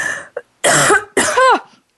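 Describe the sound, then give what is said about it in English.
A loud coughing fit: a short rasp, then two harsh, strained coughs in quick succession, each with a raspy throaty tail, heard alone without talk. “I made it all the way through the show without coughing.”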